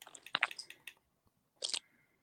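Wet gulping and mouth noises right up against the microphone: a quick cluster of clicky swallows, a pause, then one more burst, with no talking.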